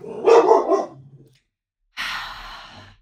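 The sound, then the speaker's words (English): A dog on the floor of a living room lets out one short bark, followed after a brief pause by a breathy huff or exhale. No one speaks. “We're on the floor of my living room and my dogs are definitely a part of the vibe.”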